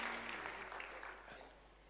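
An audience at a church service claps together in a steady, dense wash of applause that thins slightly toward the end, with a faint low hum beneath.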